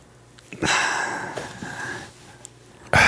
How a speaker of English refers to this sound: he's like just breathing and like looking at this. Is very awkward right now.